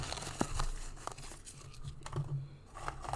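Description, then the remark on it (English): Small paper cups being crumpled and folded over and over, giving irregular crinkling and crackling bursts with a few sharper snaps, fairly quiet, with no one talking. “Thing is, if you hear a lot of rustling, it's because we have small cups and I just, you know, folded them up a billion times.”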